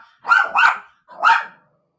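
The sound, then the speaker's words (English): A dog named Sadie barks at the Prime delivery driver whose truck is making its daily stop: three barks in quick succession, two close together and then one more after a short pause, each loud, sharp and mid-pitched, with no talking. “Speaking of Prime, while I delay, while Sadie's upset at the Prime driver”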